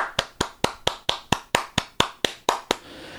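Hands clap along at a cruise ship muster drill in a quick, steady rhythm, about a dozen crisp, loud claps evenly spaced, ending abruptly and leaving faint background noise. No voices or music stand out.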